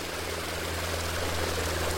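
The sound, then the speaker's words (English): A boat going past, recorded underwater: a steady, droning engine hum with low tonal whines and a broad wash of propeller hiss, continuous, with no voices. “there's many aspects of a boat going past that could be disturbing”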